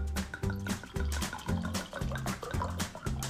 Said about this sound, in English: All right, let's pour a glass.